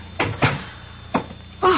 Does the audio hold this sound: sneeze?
no